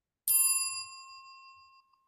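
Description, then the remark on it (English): A single bright notification-style bell ding strikes sharply and rings out for about a second and a half, fading smoothly, with no voices around it. “If you haven't already, please like and subscribe and click the notification bell.”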